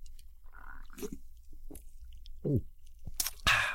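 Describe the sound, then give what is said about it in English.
Close-up wet mouth sounds, like someone sipping a drink right at the microphone: a few short slurps, clicks and a sharp hiss near the end, with no talking. “when you have a little sip of the drink into the mic, they don't like the Coke that.”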